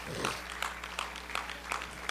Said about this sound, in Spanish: Si Dios lo tiene que levantar para bendecirte a ti, Él lo va a levantar para bendecirte a ti. ¿Puedes regalar un aplauso a Él en esta noche?